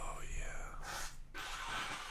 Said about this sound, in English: I'm gonna turn my head to blow my nose so as not to blow right in the microphone like an watch asshole. Watch you. Watch me blow my nose, guys.